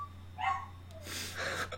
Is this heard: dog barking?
yes